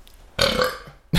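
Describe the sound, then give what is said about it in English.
A loud, drawn-out burp rumbles for most of a second, followed by a brief pause and the sharp onset of another loud burst at the end. “Oh boy, wrangled me up a big burpee.”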